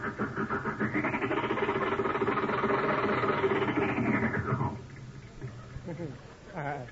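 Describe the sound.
An old car engine with stiff gears rumbles and strains loudly for about five seconds as the driver forgets to use the clutch, with a rising and falling mechanical whine, then drops away as a voice begins speaking.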